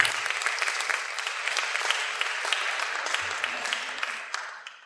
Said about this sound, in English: Thank you. Give those folks a round of applause, please.